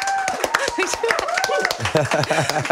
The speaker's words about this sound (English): Oh, we forgot to get a clap from our live studio audience.